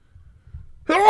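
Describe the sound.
A single sudden, loud sneeze bursts out at the very end after near silence, a sharp voiced blast with a hissy, breathy edge, from a person with allergies set off by someone burning wood, with the window open.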